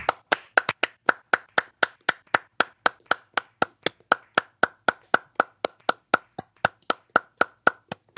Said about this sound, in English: Guys, I think it's time we clap for The Lost City. Let's clap for The Lost City here.